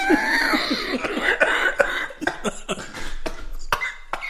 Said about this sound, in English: I just coughed my breakfast up.